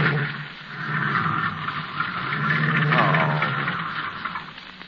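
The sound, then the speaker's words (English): A car engine revs hard and strains in a continuous, loud roar, swelling toward the middle and then easing slightly, as the car's wheels spin uselessly, hopelessly stuck in mud. No voices are heard. “No use, darling. We're hopelessly stuck.”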